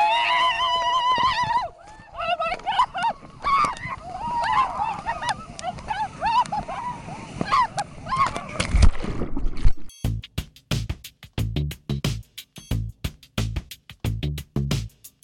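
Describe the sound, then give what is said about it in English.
A crowd shrieks and yells over churning splashes as people plunge into cold ocean water at an annual December 31st plunge event in Maine, the screams overlapping loudly for several seconds before giving way to rhythmic thumping. “The actual jumping into the water is kind of a screaming blur.”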